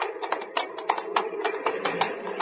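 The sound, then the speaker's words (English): A small plane's engine drones steadily while sputtering in uneven, popping bursts, a dozen or so rough coughs breaking through the hum over a couple of seconds. “Should it sound like that? Sputtering?”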